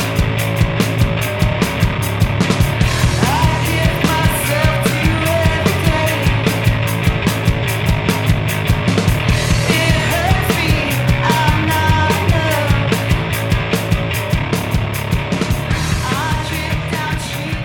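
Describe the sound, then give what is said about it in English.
A heavy rock song plays loud and dense throughout, with thick distorted bass, crashing cymbal-heavy drums, chainsaw-like crunching guitar and harsh screamed vocals driving steadily without a break. “Driving, thick, distorted bass lines rumble through crashing, cavernous drums.”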